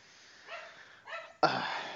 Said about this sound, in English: We're doing this during the day here, so my mom just walked in from work and the dog is going nuts. So I'm sorry if you're hearing that.